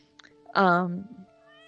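A cat gives one loud, drawn-out meow, rising and then falling in pitch, with a faint steady tone humming in the background.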